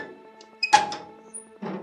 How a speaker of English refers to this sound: With some little difficulty, we found the western tomb. The professor took the key, opened the creaky door.